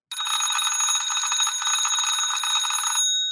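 An early 1900s mechanical wind-up doorbell, a piece of metal hitting another piece of metal, rings in one continuous, rapid metallic trill for about three seconds, loud, then stops abruptly with a brief ringing decay.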